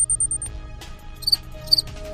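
An electronic device called the time sync, which pulses in time with a temporal distortion, emits a quick run of high-pitched beeps, then falls quiet before two short, brighter warbling chirps sound about half a second apart over a low background hum.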